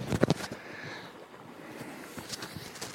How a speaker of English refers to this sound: It's 2 pounds 3 ounces, and that is very, very satisfying. That's a lovely fish, and I'm going to put it back. Let's see if we can hear it splashing away.